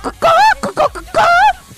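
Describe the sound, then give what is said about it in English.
A person vocally imitates a chicken clucking: two drawn-out, pitch-bending squawks with short clipped clucks between them, loud, with no other talking. “It's not what a chicken sounds like.”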